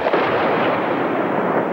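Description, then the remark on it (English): A dense, continuous roar of bombardment as the Yugoslav Air Force drops bombs and fires rockets and cannon at militia targets, explosions and cannon fire blurring into one steady, loud wall of rumbling crackle with no distinct separate blasts and no voices. “The Yugoslav Air Force dropped bombs and rockets and cannon at militia targets throughout the day.”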